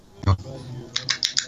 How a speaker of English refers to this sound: I'm clicking on start sharing, and then I'm going to click on down here.